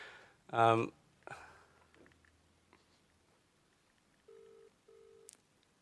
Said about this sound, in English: Okay, we're not sure who this is going to be. I'm going to try and figure that out. The phone's ringing.